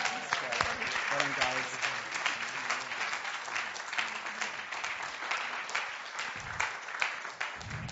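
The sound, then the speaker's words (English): An audience says amen, then applauds and cheers loudly after a prayer blessing a spot for baptisms, with dense steady clapping filling the whole stretch and scattered voices calling out underneath, the clapping thinning slightly toward the end. “And everybody said amen and gave a cheer.”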